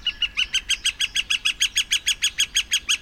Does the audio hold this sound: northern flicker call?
yes